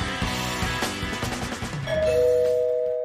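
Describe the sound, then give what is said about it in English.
A two-note doorbell chime, a higher ding then a lower dong, rings out clearly and lingers, following a short stretch of rhythmic background music. “Someone's at the door.”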